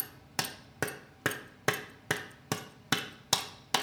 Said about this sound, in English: Let's clap our hands. Okay, and can have it like a prayer position, each palm facing the other, another one palm facing the other, like this.